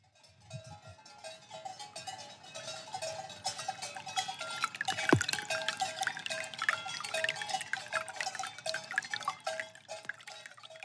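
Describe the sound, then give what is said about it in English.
Steady running water trickles and splashes as it flows into a big log used as an arm basin and out the other end, a continuous bright tinkling flow with small drips, plus faint bell-like clinks in the background. No one speaks. “It's like this big log and the water is flowing in and then flowing out the other end of the log.”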